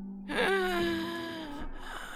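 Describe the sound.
A voice imitates a heavy, raspy wheezing breath: one drawn-out, throaty rasp lasting nearly two seconds, fairly loud, with a faint catch at the end.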